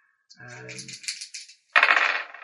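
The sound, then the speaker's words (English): Two six-sided dice are rolled during a tabletop role-playing game. They clatter and tumble across a hard surface in a scattered run of clicks, a short pause, then a denser rattling burst. A brief voice murmurs near the start. “And roll 2d6 and add”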